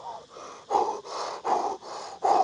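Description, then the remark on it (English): Rapid, forceful breaths in a steady rhythm, about six quick in-and-out cycles over a couple of seconds, fairly loud with no talking, demonstrating a Wim Hof breathing technique. “teaches a breathing technique similar to what you're discussing.”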